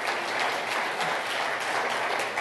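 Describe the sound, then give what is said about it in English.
Steady, dense audience applause celebrating a speaker's 28 years of marriage, many hands clapping at once in a continuous wash of sound that holds an even, fairly loud level throughout with no voices on top. “You better applaud.”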